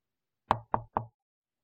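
Three firm knocks on a door in quick, even succession, clear, with silence before and after and no voices; a mother knocking on her son's door, asking him to open it.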